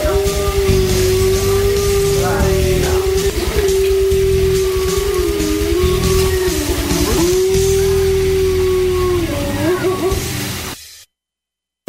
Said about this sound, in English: Time for a howling wolf montage.